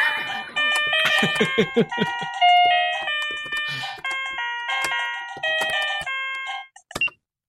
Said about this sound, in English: Oh, that's the stop button. I'll turn the keyboard off.